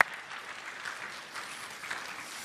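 A crowd claps steadily, a dense wash of hand claps at an even level that holds for a couple of seconds without pause or voices over it.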